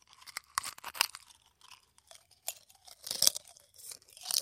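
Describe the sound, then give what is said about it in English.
Sharp, brittle crunching of glass being chewed, a man crunching an entire light bulb in his mouth in irregular bursts of crackling and grinding, moderately loud, with no talking. “The entire light bulb is now in … mouth. And he's crunching on it.”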